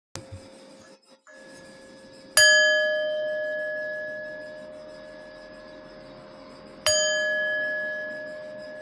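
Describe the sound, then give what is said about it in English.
Two meditation bell strikes, rung after a one-minute silent meditation, several seconds apart, each ringing out with a clear, sustained tone that slowly fades. No one speaks. “Silent meditation before I ring the bells.”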